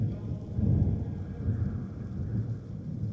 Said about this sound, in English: The air crackles with electric anticipation as stormy tempests gather, marking the end of a two-century drought that had cursed the land below.